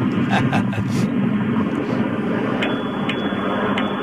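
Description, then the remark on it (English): A Bird electric rental scooter rolls along Venice Boulevard with a steady, loud road rumble and wind noise, broken by a few faint rattles and clicks. “Venice Boulevard and I'm about to try out one of these bird scooters that everybody's been talking about.”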